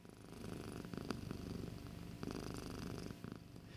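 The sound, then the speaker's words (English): A male cat purrs steadily, a continuous low rumbling vibration with a rhythmic pulse that runs through the whole stretch, broken by a couple of faint clicks. “Oh my God, you can hear him purr.”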